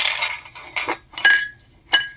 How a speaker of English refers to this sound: Sometimes that's easy because, you know, the sound is what it sounds like. Like, you know, a clatter around a breakfast table.